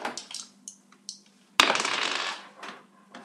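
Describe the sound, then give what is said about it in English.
A few light clicks of percentile dice being handled, then a sharp clatter as they are tossed onto a hard table and rattle to a stop, fairly loud. “I need you to roll me dice percentage.”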